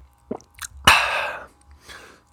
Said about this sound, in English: going to take a sip of water before we start here. Listen close.